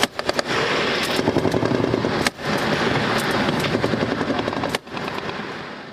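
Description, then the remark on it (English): Sustained automatic gunfire from several weapons in a combat video from the Pesh River in Afghanistan: heavy return fire after one man shoots. Rapid overlapping bursts form a loud, dense rattle with a couple of brief pauses, plus a heavy rotor-like thrum underneath. “So that's like, that's what you do when one guy shoots at you, right? You shoot everything you got back at him.”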